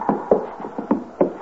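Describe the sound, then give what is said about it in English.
Feet stomping to knock snow off after coming in from shoveling snow: about six dull, muffled thumps in an uneven rhythm, of moderate loudness, with no voices. “Stomp the snow off your feet.”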